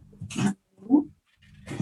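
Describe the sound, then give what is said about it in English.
A nine-month-old puppy rips at a cardboard box in short, rough tearing bursts, with a brief low growl or grunt between the rips and no talking. “Hang on, the dog's deciding to rip up a cardboard box back here.”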